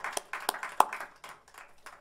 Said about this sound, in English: Now, let's give Jesus a hand clap of praise today, because he alone is worthy.